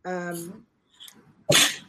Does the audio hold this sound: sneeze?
yes